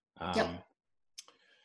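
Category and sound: household object, computer mouse clicking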